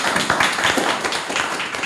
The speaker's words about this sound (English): Once more, a round of applause for Chris J, everyone.